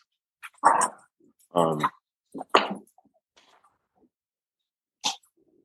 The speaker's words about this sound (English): I'm sure, okay, trying to remember, and I'm trying to keep these dogs quiet at the same time.